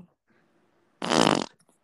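A single loud, buzzy fart bursts out after a moment of quiet, lasting about half a second, followed by faint background noise.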